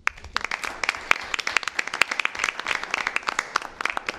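A round of applause from a small group for a counselor thanked for 12 years of service to the community, with many quick overlapping claps forming a steady, crackling patter that holds at a moderate level for several seconds.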